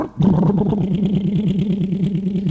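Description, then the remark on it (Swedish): A diesel tractor engine catches after a brief moment as a man gets in to drive it, then settles into a steady, loud, rhythmic chugging idle. No voices are heard. “Han satte sig i traktorn.”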